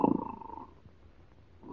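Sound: snoring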